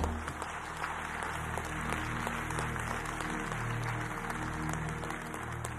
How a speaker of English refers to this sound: And everybody say, will you help me give God a round of applause, man?